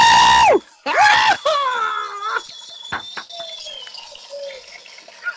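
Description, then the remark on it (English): At a graduation ceremony, as names of the class of 2019 are announced, a crowd bursts out with loud, high hollering whoops with swooping, falling pitch in the first second and a half, then fades into quieter scattered cheering and calls. “The black people always be the ones hollering.”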